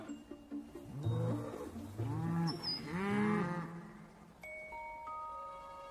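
A cow moos loudly, a long, drawn-out bellow that rises and falls over a few seconds, followed by quieter steady tones and background hum.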